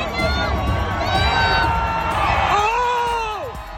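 A large outdoor crowd cheers and shouts continuously, then a girl's drawn-out, high-pitched yell rises above the din near the end, rising and falling before fading.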